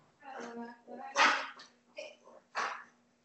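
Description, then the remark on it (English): A dog lets out a few sharp barks mixed with high, drawn-out whining cries, spread over a few seconds, with a steady electrical hum running underneath. “My dog's freaking out.”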